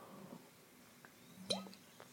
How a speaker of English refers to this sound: Bear with me while I drink some water.